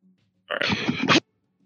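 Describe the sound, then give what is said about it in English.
A single loud sneeze: a short breathy build-up bursting into a sharp, noisy explosion that ends abruptly, with near silence before and after. “Bless you.”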